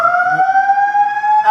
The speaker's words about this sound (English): We've got fire. That's not going to scare us. Yeah. You're no stranger to a fire alarm, you know?